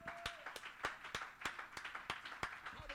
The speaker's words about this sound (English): Somebody ought to clap your hands and give him praise.